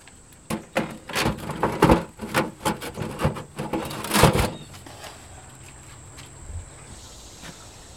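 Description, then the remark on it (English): A thick metal door is fitted over the entrance of a bread oven after the loaves are slid inside, scraped and knocked into place with a run of uneven clunks and rubbing sounds over several seconds, then everything falls quiet apart from faint background hum. “Once the loaves are inside, he fits the thick metal door over the oven's entrance and notes the time.”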